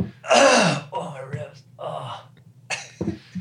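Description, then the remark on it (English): Several harsh, breathy coughs come in uneven bursts, the first loudest and longest, followed by shorter hacking coughs and a final sharp one. “Yeah, go ahead and cough.”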